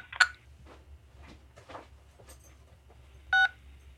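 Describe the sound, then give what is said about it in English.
A single short telephone keypad tone for the number 6, pressed in the Pet Brands customer service phone menu to hear a dog bark, sounds near the end, a steady two-pitched beep lasting a fraction of a second over a low background hum, with no one speaking. “I press 6 to hear a dog bark.”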